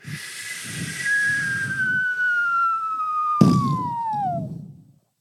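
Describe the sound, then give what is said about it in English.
A drone strike sound effect: a long whistling tone slides steadily downward in pitch over a rough, rumbling hiss, broken by one sudden loud blast before the whistle fades out. “That was the drone strike machine.”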